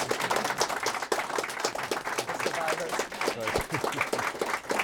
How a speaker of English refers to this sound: Please, a round of applause for them.